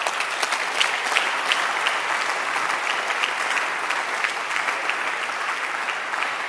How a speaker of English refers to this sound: You can clap at this point.